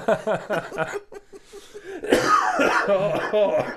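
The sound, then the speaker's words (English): A person who is under the weather coughs and clears their throat in a rough, raspy burst, fairly loud, after a stretch of laughing. “Well, I'm under the weather, and I knew this was a bad idea because if I laugh, then I cough.”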